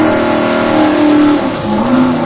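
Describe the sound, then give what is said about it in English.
A heavy fire truck engine at a hydrant revs loudly and continuously, its pitch climbing and dipping as the throttle is worked while the truck fails to go into pump, with no voices. “Oh, the truck's not in pump. Couldn't get it in pump.”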